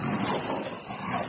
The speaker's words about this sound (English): Yeah, that was a grizzly.